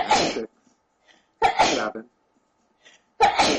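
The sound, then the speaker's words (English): Three loud sneezes burst out about a second and a half apart, with a voice speaking quietly in the short pauses between them. “Bless you.”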